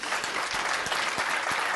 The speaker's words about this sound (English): Can you say amen? I think of, can you clap your hands? How about that?